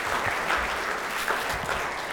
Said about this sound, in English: Brilliant. Give them a wee clap again just to say thank you.